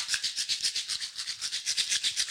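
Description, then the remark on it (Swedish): Crackling from squeezing the side of a shaker instrument: a quick, steady run of bright, scratchy rustling pulses, fairly soft and even, with no voices. “du kan klämma på den här på sidan samtidigt. Klämma på den, vadå? Ja, men så knastrar det.”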